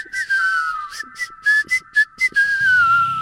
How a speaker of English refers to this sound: Beautiful whistling, that. Top-notch whistling.